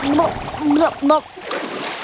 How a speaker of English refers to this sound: Then, she slipped and stumbled into the lake with a splash.